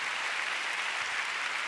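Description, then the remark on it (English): Steady applause from a crowd giving God a big hand, dense and continuous, a broad wash of many hands clapping at once with no individual claps standing out and no voices on top. “Come on, let's give God a big hand.”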